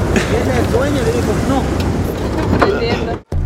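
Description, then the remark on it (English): A truck rumbles loudly as it brakes and slows, with a brief burst of hiss near the end and muffled voices murmuring underneath as everybody unloads, then a sudden cut-out before the noise returns. “Our truck just made a braking sound and everybody's loading off.”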